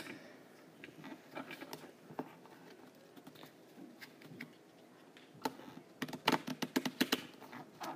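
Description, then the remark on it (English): Cards being shuffled: a run of crisp, irregular clicks and flutters, quieter at first, then a denser, louder riffling burst toward the end. No one speaks. “Okay, you don't know how to shuffle. I just did.”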